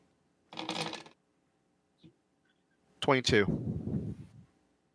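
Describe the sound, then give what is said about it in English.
Two dice rattle briefly in a hand, followed by a single soft click, then a louder burst of clattering as they tumble across a hard tabletop during a tabletop game, fairly quiet overall; they land on a 6 and a 5. “I rolled a 6 and a 5.”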